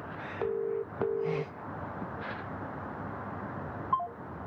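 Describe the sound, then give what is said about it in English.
A telephone ringback tone on an outgoing call to a model agency at 7:31 a.m.: one classic double ring, two short steady buzzing tones in quick succession, followed by a quiet line hiss with no answer. “Ringing Storm Model Agency at 7:31 a.m.”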